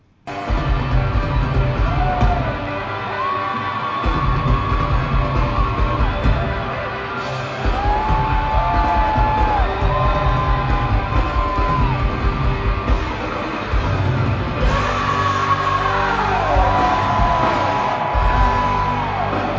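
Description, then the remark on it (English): Loud live rock music fills the whole stretch, with a band driving hard and a singer belting and screaming over it, crowd noise blending into the dense, distorted wall of sound. “Now we get into it, and I'm going to play a little bit of ….”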